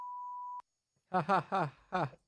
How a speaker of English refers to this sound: just put a beep right there, like a long beep, and then end it right there and start laughing.